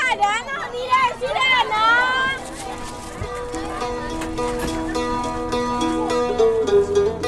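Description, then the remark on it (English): A busy outdoor street market crowd, with as many people from Burma as from Thailand, with overlapping chatter, a few louder calling voices near the start, and a steady bed of murmuring and faint tones continuing throughout. “A walk through the street market is a mixture of smells and flavors, exotic even to the Thais.”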